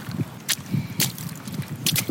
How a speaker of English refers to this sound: This is the rain splashing on my gumboots.